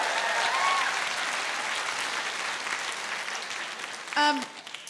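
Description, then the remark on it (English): A live audience claps steadily for several seconds, a dense, even wash of applause that fades slightly, followed by a brief voice near the end. “Big round of applause for Genevieve Robinson.”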